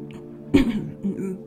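A short, rough cough bursts out once, followed by a softer second hack a moment later, close by and fairly loud against a low background hum.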